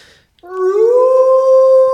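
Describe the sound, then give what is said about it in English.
A single sustained wolf howl sound effect rises smoothly and holds a long, steady, loud tone after a brief quiet moment at the start. “That's going to be my sound for y'all when y'all come back.”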